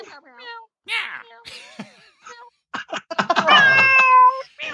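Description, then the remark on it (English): A person imitates a cat with a string of expressive meows, as part of a bit called Cat's Cradle done with a piece of string, rising and falling, building into a louder, drawn-out yowling burst near the end. “Sounded better in practice. Meow!”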